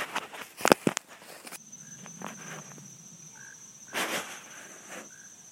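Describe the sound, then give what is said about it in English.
A few soft, wet squelching footsteps through a marsh bog while someone looks for plants, with a steady high insect drone and occasional short chirps of insects and frogs in the background. Nobody speaks. “Just standing in the marsh bog here. Looking for plants. Very squishy.”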